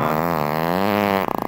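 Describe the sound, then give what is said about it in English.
A loud, drawn-out fart: a buzzy, slightly wavering low tone that holds for over a second, then breaks into a quick sputtering flutter at the end, with no talking, played in a radio guessing game called Guess Who's Gas. “Well, that's how you play radio's most immature game. Guess Who's Gas.”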